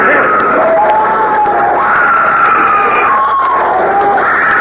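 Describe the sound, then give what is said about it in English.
A loud, continuous crowd roar of many voices shouting and whooping, with a steady dense bustle and occasional sharp clicks, as shoppers rush through a store's opening doors for sewing machines, ice boxes, radios and washing machines. “Attention customers. Please do not rush.”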